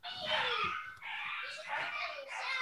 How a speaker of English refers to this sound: Is that my dog? Ooh, I gotta go.